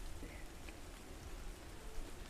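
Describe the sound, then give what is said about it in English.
Steady rain patters down in a soft, continuous hiss, with a few scattered drops plopping into water on a floor. It stays fairly quiet throughout, with no voices. “Well, yeah, it's raining. That's really loud. It's a louder plop sound.”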